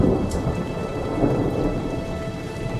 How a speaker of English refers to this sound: Thunder starts to kind of rumble in the distance.